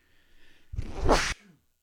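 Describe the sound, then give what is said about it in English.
A single loud sneeze bursts out sharply and stops abruptly, following a faint intake of breath, with no talking. “Bless you.”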